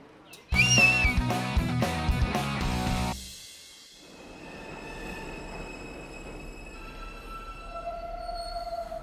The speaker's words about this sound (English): Okay, quick, let's hop on the subway and head north.